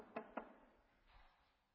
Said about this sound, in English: And somewhere there's a knock at the door.